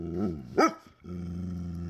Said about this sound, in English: Some were things that, when he took his hearing for granted, he actually kind of hated. Like my dog barking.